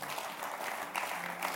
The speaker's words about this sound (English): Give the Lord a mighty clap of faith.